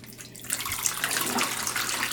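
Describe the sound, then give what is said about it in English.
HC110 film developer is poured out of a developing tank in a steady, splashing stream that starts abruptly after a brief quiet moment and continues at a fairly even level, moderately loud, with no talking. “So I'm going to pour out at 10, which is my normal.”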